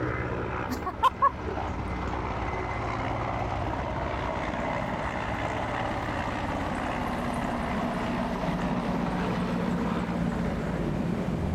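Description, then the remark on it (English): A steady, loud rotor drone fills the air, a helicopter flying overhead with broad rumbling engine noise that holds throughout, broken only by two brief sharp clicks near the start. “Finally, the chopper. That must be the PM.”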